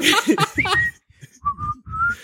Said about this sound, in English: And then whenever they're around, you just hear them going. I'm trying to think of a more stupid whistle I could do. The Joel Santana whistle.